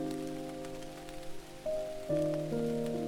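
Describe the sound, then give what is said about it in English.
A steady, soft hiss of rain pattering on a surface, blended with sustained, gently shifting ambient music tones. No one speaks. “And let the rain wash it.”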